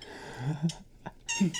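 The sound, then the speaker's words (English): A dying rabbit screams in two harsh, shrill bursts, each a strained squealing cry with a raspy hissing edge, separated by a short pause. No one speaks. “This is dying rabbit sound.”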